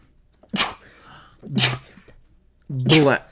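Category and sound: human body sound, sneeze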